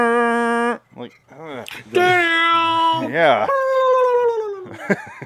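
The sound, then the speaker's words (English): A man sings in nasal, honking tones like a duck call in a film's end-credits song, holding loud wavering notes broken by short, sliding yelps, with no words. “He sounds like he's doing a duck call, doesn't he?”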